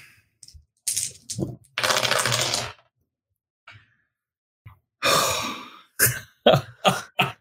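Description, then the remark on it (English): Bursts of hard, clattering rattles of many dice tumbling across a tabletop during a game, followed by several sharp separate clacks near the end, with quiet gaps between and no talking. “That's so many dice.”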